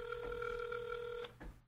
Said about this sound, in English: I don't want the podcast room phone ringing all the time.